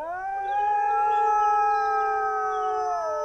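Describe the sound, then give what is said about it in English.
A chorus of about 250 sled dogs in a fjord howls together, one setting off the next until the whole pack joins, with many long sustained wavering voices layered at different pitches, loud and continuous for several seconds with no one speaking. “And by the end, you get this 250 wolf mega pack that's howling.”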